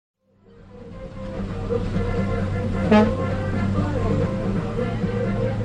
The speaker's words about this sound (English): Okay, we're on route to San Jacinto. This is the number 5 bus going to downtown. These are like old school buses from the United States that they send over here, paint them up, and they use them for public transportation.